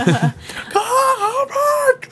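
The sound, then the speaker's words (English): A single voice lets out a wavering, high-pitched wail, imitating screaming fans. It starts with short breathy gasps, then sustains a rising and falling moan for about a second and a half. “Our Nerds Base fans are screaming and rioting because we've just said that.”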